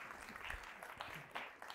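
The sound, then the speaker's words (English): An audience claps steadily together, a dense patter of many hands at moderate volume, with no voices rising above it. “Can we give them a round of applause?”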